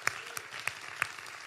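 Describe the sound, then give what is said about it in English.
An audience claps their hands, a dense, steady wash of applause with a few sharper, louder claps standing out at a regular beat every third of a second. No one speaks. “Give him a big hand clap.”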